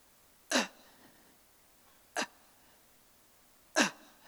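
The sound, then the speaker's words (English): Three short, sharp gasps for air, spaced roughly a second and a half apart, each a harsh, breathy burst followed by quiet, like someone straining desperately to breathe, given as a demonstration of fighting and gasping for air. “So you have to fight and gasp for even the tiniest bit of air in hell.”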